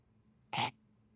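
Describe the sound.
A single short, quiet hacking burst from a person, a brief throat-clearing sound imitating a dog, standing alone against a low background hum.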